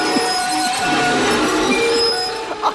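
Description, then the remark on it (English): A voice imitates a chair being dragged across the floor in front of everyone during a school public speaking competition: a loud, continuous screeching scrape with steady whining high tones, held for nearly three seconds without a break. “I'm dragging. Chair in front of everyone.”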